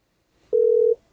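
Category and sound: signal or alarm, phone call ringing tone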